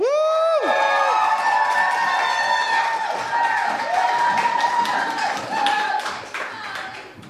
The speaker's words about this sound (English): Applaud the poet, not the points. And keep that applause going for our second poet of the evening.